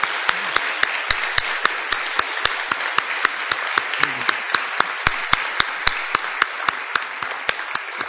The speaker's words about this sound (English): Now let's give all of these people a round of applause for their service to our church.